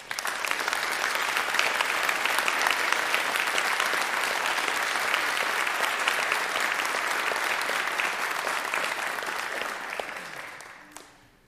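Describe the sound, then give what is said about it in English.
A large audience gives military veterans a round of applause for their service. The clapping is steady, sustained and dense, holding at an even level for about ten seconds before tapering off at the end. “I know we don't do this a whole lot, but if you've served our country, and we'd like to just give you a round of applause for your service.”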